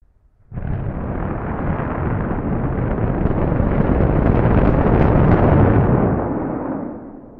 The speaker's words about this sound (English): On Thursday, February 9th, SpaceX conducted a static fire of 31 out of the 33 rocket engines.